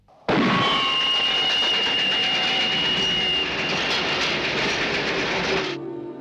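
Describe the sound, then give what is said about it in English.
A train rumbles loudly along railroad tracks, a dense continuous roar with steady metallic whining tones and rhythmic clatter, starting abruptly and cutting off near the end, with no voices. “The railroad.”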